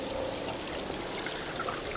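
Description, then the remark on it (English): Underwater hydrophone recording of sea wash slapping against the underside of a boat, a steady hissing, splashy wash with faint high crackles running throughout, heard from some distance with no voices. “Yeah, there are those sort of surges, and then there's that high frequency slap, which I think is sea wash on the underside of the boat, isn't it, even though our hydrophones were some distance away.”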